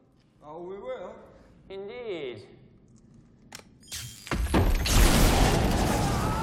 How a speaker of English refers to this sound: Practical explosion. Obviously, debris wasn't real.